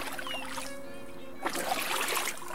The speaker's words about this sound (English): They pushed the boat into the water, and the students took some tentative paddle strokes out to sea.